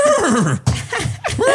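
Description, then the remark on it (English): A person mimics a horse's whinny, a loud, wavering neigh that slides downward in pitch, followed by a couple of shorter, shaky bursts. “Maybe you could get blinders from me like a horse has them. And you'd be like, whoa. Whoa, whoa boy.”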